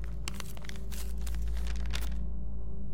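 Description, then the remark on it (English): A sheet of paper with a message written on it rustles and crinkles, a quick flurry of crisp crackles as it is handled and unfolded, over a steady low hum, then stopping near the end. “Just a piece of paper with that written on it.”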